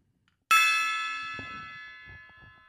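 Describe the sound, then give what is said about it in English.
A single gong strike, struck to begin a meditation, rings out sharply and then hangs in the air, its bright metallic shimmer slowly fading, with faint low rustling underneath. “I'm going to go ahead and gong us in.”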